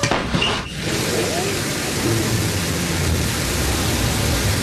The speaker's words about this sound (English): We got fire. No liftoff yet. Oh, there he goes. New Shepard cleared the tower. And New Shepard has cleared the tower on her way to space.